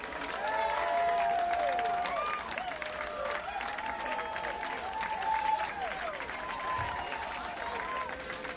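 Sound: applause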